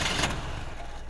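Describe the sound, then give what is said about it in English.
A car engine cranks with a brief, harsh burst of noise as a key is turned in the ignition and gas is given, then settles into a steady low rumble as it catches and keeps running, with no talking over it. “If you want to turn the engine on, so to speak.”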